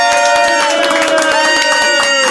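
A crowd applauds and cheers loudly, dense scattered clapping running under steady sustained musical tones for the whole stretch, with no one speaking.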